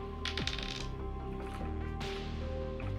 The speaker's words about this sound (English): So while you guys are rolling your hit dice, I will tell you what your magic items are.